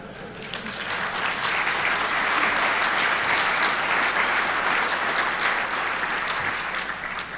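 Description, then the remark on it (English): A crowd applauds steadily for several seconds, a dense, even wash of clapping that swells in at the start and holds at a loud, constant level, with no voices on top. “You're going to clap when you read this.”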